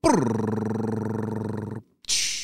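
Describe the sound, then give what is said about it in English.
A voice imitates a drum roll: a loud, steady rolling trill that lasts nearly two seconds, stops briefly, then ends with a short hissing cymbal-like 'tss'. “I need your help celebrating two birthdays. Drum roll, please.”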